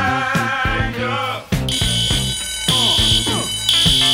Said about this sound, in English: If I could I have a smoke alarm, please?